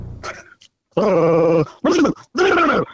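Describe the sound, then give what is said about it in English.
In a dog impression contest, a man imitates a big Rottweiler: a brief low growl, then three loud, drawn-out barking howls with short pauses between them. “Who had the best dog impression?”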